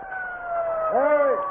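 A police car siren sounds as the car arrives on a bridge, a steady high tone joined by a second tone that swoops up and back down near the end, fairly loud and constant throughout.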